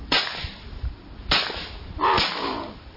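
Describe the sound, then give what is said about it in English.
Three loud, sharp shotgun blasts are fired at an incoming white wing bird, which is hit, with no talking: two crisp cracks about a second apart, then a third, fuller report that trails off in a rough, noisy roar. “Shoot this bird.”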